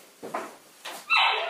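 animal, dogs barking and whimpering

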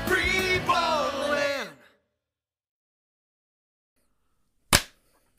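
human body sound, hand clap

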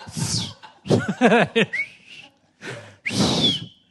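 human body sound, person whistling a tune

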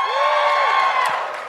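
crowd, audience cheering

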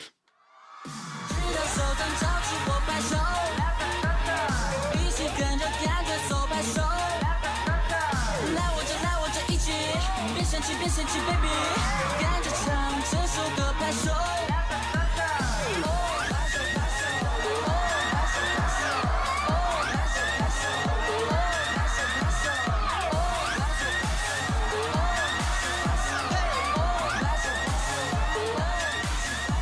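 crowd, audience clapping along

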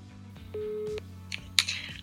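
signal or alarm, telephone dialing and ringing

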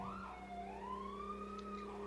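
vehicle, police sirens passing outside

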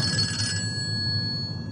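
household object, telephone bell ringing

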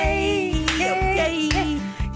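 human body sound, clapping along

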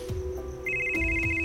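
signal or alarm, telephone ringtone

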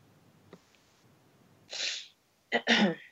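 human body sound, throat clearing

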